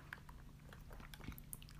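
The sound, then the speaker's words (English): Someone sips a thick, whipped coffee drink made with oat milk through a straw, with soft wet mouth clicks and brief slurping over a low steady hum; no talking. “So now ready we're gonna to take do a it? Little sip.”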